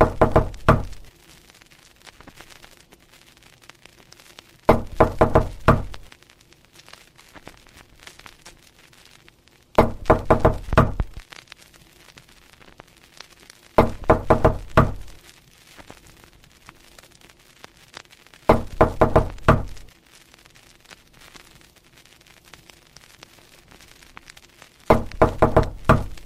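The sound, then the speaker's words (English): Firm knocking in quick bursts of several raps, repeating about every five seconds, with near-silence and a faint low hum between the groups. No one speaks. “Wake up fast, give me two good hits. All you have to do is knock.”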